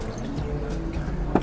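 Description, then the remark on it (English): 20 ml of thick cucumber syrup pours steadily into a small measure, a soft continuous trickle with one brief drip-like splash near the end. No voices. “Then 20 ml of the cucumber syrup.”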